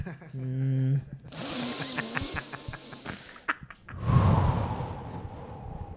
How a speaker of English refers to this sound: okay, so there's breathing techniques you can do.